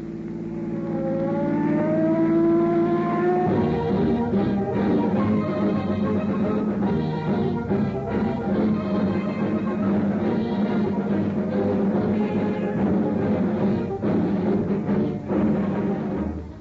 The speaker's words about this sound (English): On the busiest streets of the West's largest city, streams of traffic speed endlessly by. At the intersection of a quiet side street, a car waits impatiently for an opening to cross the boulevard.